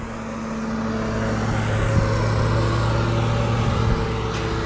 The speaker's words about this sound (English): You're probably going to be able to hear this because it's a lawnmower guy.